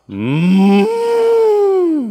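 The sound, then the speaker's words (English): A person imitates a cow with one long, loud moo, a drawn-out low bellow that shifts pitch partway through and fades at the end, heard alone. “Goats, cows, the cows would probably be the loudest.”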